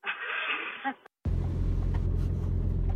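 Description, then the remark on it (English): Steady, loud low-pitched engine and road rumble from inside a moving car, preceded by a brief muffled, tinny stretch of sound and a short moment of silence. “We are still officially in the car.”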